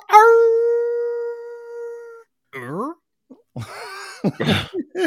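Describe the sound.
A person howls like a wolf: one long, steady, loud note held for about two seconds, then a short wavering yelp, followed by brief rough vocal sounds and talking.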